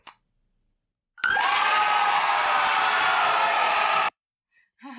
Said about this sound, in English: So I wanted to throw that little cheer in because I think, yeah, it's a win-win situation. It's a win for our podcasters, and it's a win for anybody that signs up for either of those options. And also I wanted to play that cheering sound